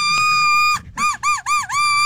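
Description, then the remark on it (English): A Duck Commander Woody duck call blown with one long, steady reedy honk, then a quick run of four nasal quacks that each dip in pitch and rise again. The sound is loud, and no one talks. “Is it a duck commander? Yeah, it's a duck commander, a Woody.”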